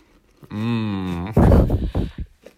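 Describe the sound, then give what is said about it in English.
A sneeze: a drawn-out, steady voiced 'aah' builds for almost a second, then bursts into a loud, explosive 'choo', followed by a few short, breathy sputters. “I sneezed.”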